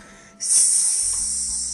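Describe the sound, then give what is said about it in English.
A voice imitates the Aggie hiss of A&M: a sudden, sustained, sharp airy sound starting after a brief quiet moment and holding steady and loud for over a second, with a faint low hum beneath. “I automatically said who I voted for, and I was victim of the Aggie hiss.”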